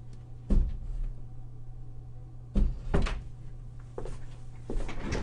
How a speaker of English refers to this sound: Someone coming in asking a question. Sorry about that. I forgot to close my door.